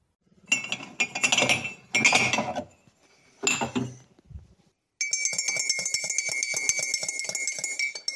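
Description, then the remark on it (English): Cups and cutlery clink and clatter in a few loud, busy bursts as a fresh pot of tea is made, then a steady run of quick, light metallic tinkling continues for the last few seconds, with no voices. “Let it brew for a few minutes.”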